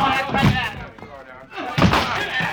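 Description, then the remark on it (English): A locked door being broken in: two loud, heavy slamming blows about a second and a half apart, each with a splintering thud, amid indistinct voices. “We've got to break that door in.”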